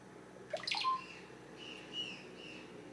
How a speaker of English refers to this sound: hidden away in the cloud forests of the high jungle, and sit listening to the golden-tailed birds and reflect on the strange events of the day.